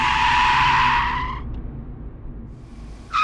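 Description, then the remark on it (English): A car's tires screech loudly for over a second as it skids to a sudden halt, followed by a low idling rumble and a brief second squeal at the end. “Wait, stop the car.”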